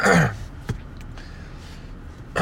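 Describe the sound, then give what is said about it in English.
A single harsh, dry cough from a dry throat after little sleep bursts out, followed by a couple of faint clicks and quiet background noise before another short sharp sound at the end. “But yeah, guys, you heard that cough? That is not the coronavirus. That is a dry throat.”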